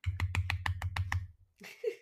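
A quick run of about eight light, sharp claps at an even, brisk rhythm over a low hum, followed by a short burst of voices.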